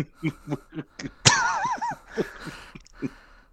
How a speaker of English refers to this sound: Gesundheit.